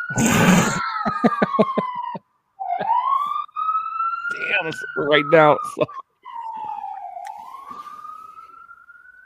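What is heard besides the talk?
emergency vehicle sirens passing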